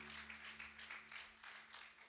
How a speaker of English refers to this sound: Give the Lord one more big hand clap of praise as you're seated today.